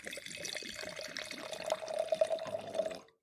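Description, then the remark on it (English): Nebbiolo wine poured into a glass in one steady stream lasting about three seconds, a faint ringing tone rising as the glass fills before the pour stops abruptly. “He says, no, we need to get the sound effect.”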